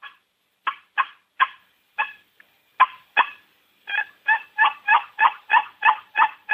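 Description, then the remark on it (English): Loud wild turkey yelps ring out alone: a few spaced, raspy notes at first, then a quick, steady run of about ten yelps in a row. “And they're calling loud.”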